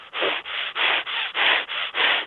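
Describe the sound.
A voice imitates the aggressive, raspy breathing of a voice that came through a walkie-talkie: about seven loud, harsh, hissing breaths in a quick, steady rhythm, each rough and noisy, with no words spoken.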